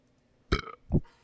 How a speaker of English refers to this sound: Cool. I got about two thirds. I gotta get the burps out.